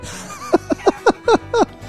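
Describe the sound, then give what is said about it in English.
A run of about six short, sharp chicken clucks in quick succession, loud, each a brief throaty burst with a small drop in pitch, with no talking over them. “get these chickens out of here, man.”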